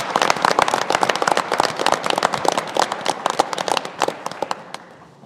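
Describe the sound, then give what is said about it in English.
An audience at a meeting applauds, a dense, steady clatter of many hands clapping at once that holds loud for several seconds, then thins out and tapers off near the end. “I think for those of us that are left, we should give them another round of applause.”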